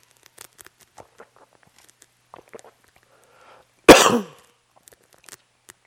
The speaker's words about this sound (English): I may start coughing, by the way.